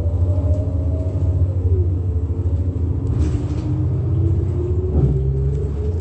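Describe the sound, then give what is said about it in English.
Steady low traffic rumble at a roadside bus stop by the Ontario Mills, with a vehicle engine droning and its pitch sliding as it shifts, plus brief passing whooshes; no one speaks. “Now we're at the bus stop.”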